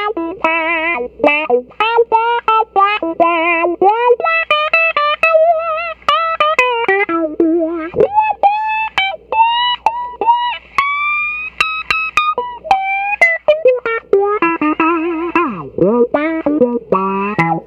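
A loud electric slide guitar played through a wah-wah pedal, pitch gliding between notes while the tone sweeps and quacks, with a dry, unreverberated sound and no talking.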